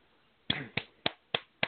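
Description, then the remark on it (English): Five sharp hand claps in a steady, fairly quick rhythm, each a crisp, bright smack that fades quickly, with nothing else but faint background hiss between them. “I don't know if you can hear me, but I'm clapping because that's just that's the amazing thing.”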